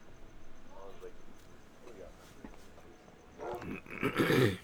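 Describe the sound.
A dog growls and snarls, starting with low rumbling and building into a harsh, loud outburst at the end, with faint voices in the background.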